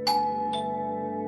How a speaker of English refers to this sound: Stopped when the doorbell rang.